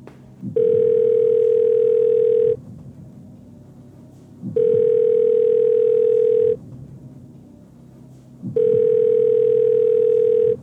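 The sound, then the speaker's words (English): A telephone ringing tone purrs three times, each steady ring lasting about two seconds with equal pauses between, loud, and the call is never answered. “I would like to phone the audience.”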